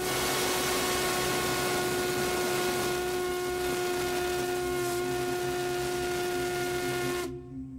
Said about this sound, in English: Now, this is the Crosby whistle from the 1870s and 80s.